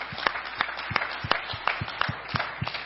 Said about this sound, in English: Hey, we can clap to that one.